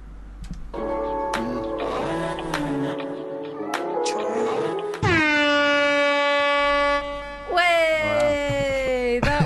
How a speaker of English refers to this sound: I can't believe you just did a foghorn. I felt like it was needed.